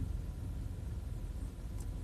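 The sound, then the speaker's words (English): A car's low engine rumble drones steadily as it is driven to park, a dense, even hum with road noise that holds constant throughout, no voices present. “I'm gonna just try to park my car now without completely screwing something up here.”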